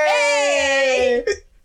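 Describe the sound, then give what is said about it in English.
A drawn-out, high, strained vocal wail that breaks off into a single short hiccup-like catch, followed by a faint breathy tail. “Hiccup. It worked.”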